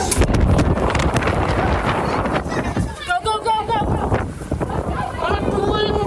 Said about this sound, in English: They reach the restaurant door but find they can't escape. I can't get this door open. The 110-mile-an-hour wind gusts bear down on the restaurant door, trapping them inside.